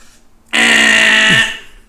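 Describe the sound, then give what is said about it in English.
A loud, harsh game show buzzer blares once for about a second, starting abruptly and cutting off sharply, heard alone with no talking; a contestant buzzing in on the Game Goose Genius video game trivia quiz. “I heard Clinton on the buzzer.”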